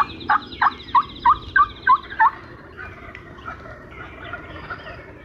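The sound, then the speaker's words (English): Many turkeys gobbling outdoors: a loud gobble of seven rapid rattling pulses in the first two seconds, then fainter gobbles overlapping in the background. “I don't even know how many birds were there.”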